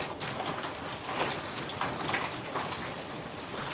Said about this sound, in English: Can you hear that? Yeah. It's raining. Yeah, it just started raining here too.